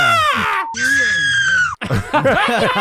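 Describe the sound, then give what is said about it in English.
A woman screams hysterically, loud, in shrill strained bursts: a rising wail, a long sustained shriek, then choppy sobbing cries with ragged breaks between them, as she grabs at a man who is recording her on video and pretends he is hitting her. “But she's grabbing at him and screaming as if he, and then pretending that he's hitting her.”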